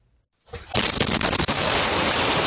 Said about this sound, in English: A deadly house explosion rains debris down on an entire neighborhood. The flying wreckage from this explosion in Pittsburgh left neighbors terrified, house after house destroyed.